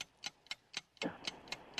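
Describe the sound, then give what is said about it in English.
A clock ticks steadily and crisply, roughly four sharp ticks per second, fairly loud: a game timer counting down a 30-second quiz round, with no voices heard. “Right, start the clock now.”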